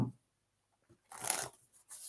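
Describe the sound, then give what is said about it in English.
Cards being shuffled and drawn: a quick papery riffle, then a shorter rustling slide, crisp and fairly soft, with near-silence between and no talking. “All right, let's pull a couple cards for you.”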